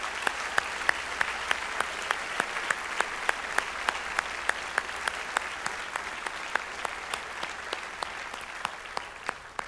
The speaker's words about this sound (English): So just, it's not at all adequate, but can we give a round of applause as our way of honoring those who've gone before us?